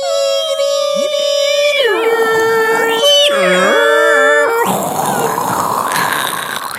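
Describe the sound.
A voice imitates a dial-up modem for several seconds: sustained whistling tones, warbling pitch slides and dips, then a harsh hissing static burst, loud throughout with no other talk.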